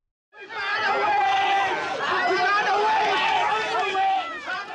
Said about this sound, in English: As you can hear, there's an angry crowd that is bringing a woman forward.